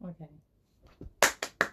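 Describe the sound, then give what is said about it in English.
Hands clap four times in a quick, even rhythm, each clap a sharp, bright smack. A brief murmur of voice comes just before the claps begin. “That's not me clapping, by the way.”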